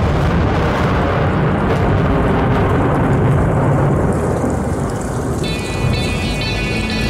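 Steady, dense rain hiss with deep rolling thunder rumbling underneath, sound effects opening a song, loud and continuous, before a thin high musical tone quietly enters near the end.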